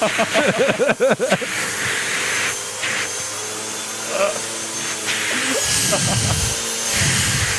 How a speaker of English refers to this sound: There's no beard vacuums. There are... Now I'm using a regular size vacuum.